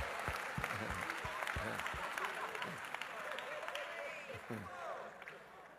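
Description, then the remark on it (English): An audience breaks into sustained applause, many hands clapping in a dense, steady wash for several seconds, with scattered voices calling out over it, clapping for the American Standard Version at the speaker's call. “Clap for the American Version.”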